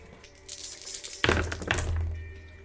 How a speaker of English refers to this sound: Two Griffin dice. Roll four more d6 for me.